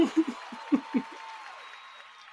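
A short burst of crowd applause with a few low whoops and chuckles, fading out over about two seconds into a faint hiss.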